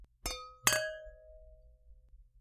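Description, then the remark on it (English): Two bright clinks of wine glasses touching during a toast, close together, each leaving a clear ringing tone that fades over a couple of seconds amid quiet. “All right, well, I want to drink this wine real bad. I've had a day. I need all of this in me right now. So I think cheers.”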